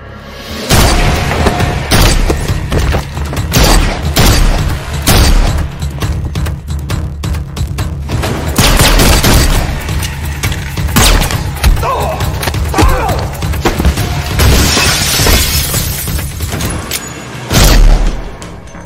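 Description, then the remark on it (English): A loud action scene from a John Wick movie: rapid, irregular shotgun blasts and heavy thuds over a booming, rumbling score, with bursts of shattering glass scattered throughout and a big impact near the end. “It's just a lot of shotgun shells pointing and clicking.”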